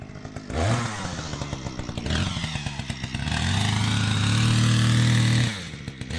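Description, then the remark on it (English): A chainsaw engine roars, its pitch dropping and surging as it bites into hard, ancient fossil-bearing sediment, then holding a steady, loud grinding whine before easing off near the end. “Without John's chainsaw, we wouldn't have found the really nice fossils that we've found in the last few years, so...”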